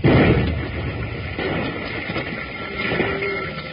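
A stick of dynamite with a lit fuse, thrown out, goes off: a heavy blast bursts out at once, then settles into a long, rough rumble that keeps roaring at a steady level until the end, with no voices heard.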